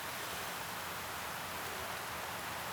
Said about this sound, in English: Can you hear that? That's the rain. The sun is very far away right now. So we're now coming through some trees.